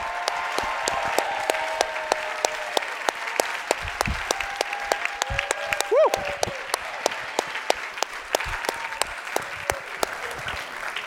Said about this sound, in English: And we just have an incredible group of faculty and staff, and many of them are in the room today. I'm going to ask if they will all stand. And students, let's give them a big cheer and a round for the work they do.